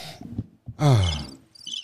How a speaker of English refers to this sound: Crickets. Yeah, hit the crickets because I can't.